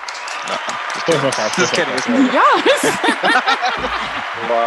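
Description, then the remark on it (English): A few people clap in quick, uneven bursts of sharp smacks, mixed with laughing and excited voices talking over the clapping. “Some claps.”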